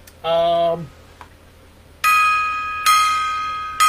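A gong is struck several times: a short lower tone first, then three brighter, ringing strikes that each hum and slowly fade, with no talking.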